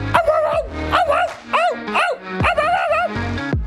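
A dog barks and yelps in a rapid series of about five loud bursts with short gaps between them, with no one speaking.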